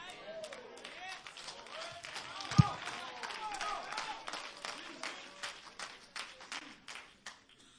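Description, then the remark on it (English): Scattered, uneven clapping from an audience during a sermon, sharp claps coming in loose bursts and thinning out toward the end, with some murmuring voices underneath. “I probably wouldn't be clapping with what I was preaching either if I was sitting out there.”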